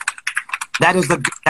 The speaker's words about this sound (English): She's fact-checking you. Seriously, typing.